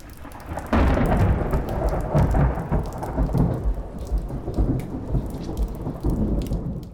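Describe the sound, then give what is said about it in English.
Heavy rain pours steadily at night while deep thunder rumbles continuously underneath, swelling in suddenly after a quieter first moment and staying loud throughout, with no voices. “It's another rainy night, but Oliver has found him again.”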